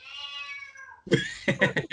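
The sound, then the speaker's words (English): A male cat meows: one drawn-out meow that slides downward, followed by a quick run of three or four short, clipped meows. “And wait, is that your cat or mine? It's mine. He's okay. He talks a lot.”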